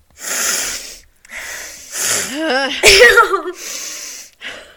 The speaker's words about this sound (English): Sniff, like not right on the mic either.